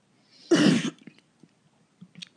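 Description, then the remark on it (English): A single loud, harsh cough bursts out, followed by a few faint clicks and small rustling sounds in otherwise quiet surroundings. “I had to cough.”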